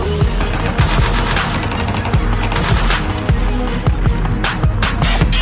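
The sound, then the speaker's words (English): Dense, continuous gunfire with rapid overlapping shots and bursts crackling loudly over a low rumble for several seconds, like a heavy firefight, with no voices. “Sounds like gunshots everywhere I go.”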